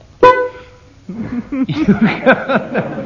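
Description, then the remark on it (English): A single sudden, loud sneeze bursts out with a short voiced tail, then a pause before a stretch of chuckling, murmuring voices. “Bless you”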